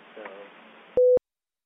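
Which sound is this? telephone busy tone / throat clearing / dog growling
telephone busy tone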